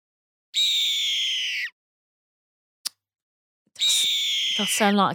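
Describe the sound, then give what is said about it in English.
A newly born baby eagle calls twice, each a shrill, piercing cry lasting over a second and loud, separated by a short pause and a sharp click, with no voices. “Oh, my God. It's a baby eagle.”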